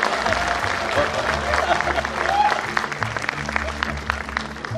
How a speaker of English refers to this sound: First time you're talking in the mic. So hold the mic. Let's clap for it.